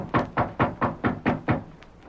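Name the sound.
knocking on a door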